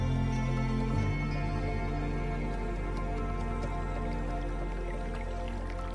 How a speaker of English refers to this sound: Listen to the sound of the creek softly flowing.